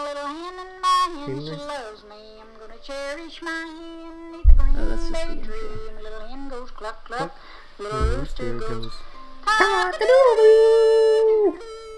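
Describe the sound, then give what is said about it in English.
A lively children's song sung by a woman about loving her little rooster, with a voice imitating a rooster's cock-a-doodle-doo in a long, wavering held note near the end, punctuated by a couple of low thumps. “See, the song's fun because she first says, I love my little rooster. He goes, cock-a-doodle-doo.”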